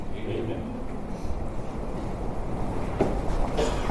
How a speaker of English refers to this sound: I'm thankful God can still send the rain. We hear it raining outside.